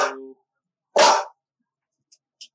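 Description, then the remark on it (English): A dog barks twice, loud, with a short gap between the barks, followed by a couple of faint, brief high-pitched chirps; the dog has been barking for three hours straight. “dog, so loud.”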